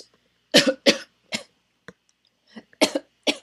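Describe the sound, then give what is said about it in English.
A loud coughing fit: about seven sharp, harsh coughs in quick, irregular bursts, with brief gaps between them and no talking. “Bless you.”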